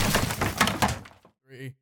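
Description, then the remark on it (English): A hard slam on a desk gives a loud, broad crash that rattles and fades over about a second, then a brief voiced exclamation follows in the silence. “Note to self, don't fucking slam the desk.”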